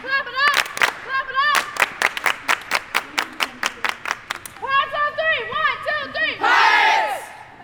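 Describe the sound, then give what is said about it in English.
A team claps in quick rhythmic unison, sharp evenly spaced claps, then breaks into a loud shouted chant that swells into cheering at the end, energetic. “Clap it up!”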